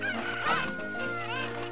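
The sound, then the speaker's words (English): A video game chicken clucks and squawks in a quick run of nasal, pitch-bending calls, fairly loud, with no one talking. “That's why you gotta Z-target the chickens.”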